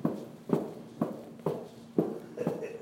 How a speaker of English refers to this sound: Let's take and hold on to the hoop at 10 and 2 and just stomp out the legs after that. That was a big one.